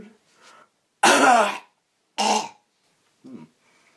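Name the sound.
person coughing on request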